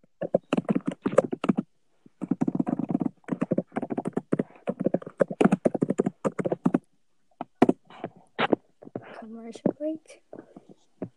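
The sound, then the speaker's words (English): Rapid clicking of keys on a computer keyboard, fairly loud, in an irregular stream of bursts with a few short pauses, with a little soft voice activity mixed in near the end. “Whoever's typing, please stop.”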